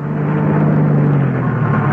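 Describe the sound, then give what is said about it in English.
A taxi's engine hums steadily, a loud low drone whose pitch sags slightly near the end as the car pulls up to a stop. No one speaks. “Taxi?”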